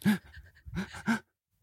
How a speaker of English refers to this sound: One was, I have to sneeze. Hold on.